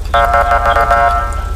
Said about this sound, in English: I'll remember to change the siren for next time. I need to write it down.